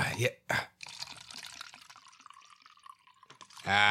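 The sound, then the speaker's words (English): Bacardi rum is poured steadily into a glass for about three seconds, a trickling splash between short bursts of voice at the start and end. “That sounded like a pour right oh there.”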